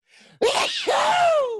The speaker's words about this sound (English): I'm going to sneeze.